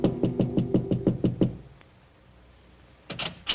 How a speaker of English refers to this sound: Then, as he prepares a drink, there is a soft knock at his door.